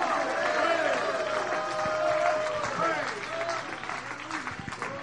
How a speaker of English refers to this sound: Clap your hands to the Lord and let's give Him a shout right now. Come on, anybody feel like giving Him a shout right now?